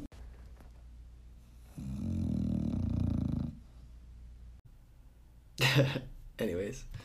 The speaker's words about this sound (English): snoring all crazy. Can you hear it? Yeah. To the listener, watch. We're going to get a zoom in on that shit.